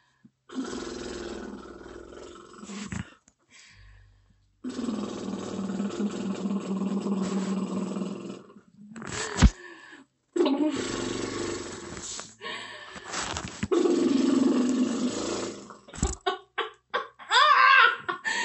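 A woman groans low and long while pushing in labor, deep sustained strains repeated with short breaths between, close and loud, with brief higher voices near the end.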